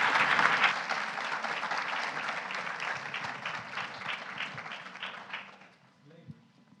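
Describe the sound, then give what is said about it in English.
A crowd breaks into steady applause for a panel, dense overlapping claps that hold strong for several seconds before thinning out and fading, with a few scattered claps at the end. “Let's give our panel a round of applause and we'll hand over to them.”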